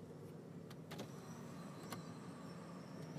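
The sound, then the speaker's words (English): Faint, high-pitched squeaking from construction tractor trailers nearby, working on the renovation of the Maui Prince, with a few short scraping bursts over a steady low rumble of engines and traffic. No one speaks. “I heard my car sounded like it was squeaking. No, I think it was the tractor trailer guys doing construction.”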